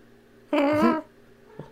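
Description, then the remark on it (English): A domestic cat lets out a single drawn-out, wavering meow, fairly loud, followed by a brief faint chirp a moment later against a quiet background. “Instead, I've got, a cat that's constantly on vibrate.”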